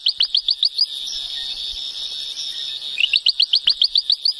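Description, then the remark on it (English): A ventriloquial frog calling in a forest on top of a remote, rugged mountain: a rapid run of sharp, high-pitched chirping pulses, then a sustained buzzing trill for a couple of seconds, before the quick pulsed chirps resume. No voices. “One of the species we came across was the ventriloquial frog.”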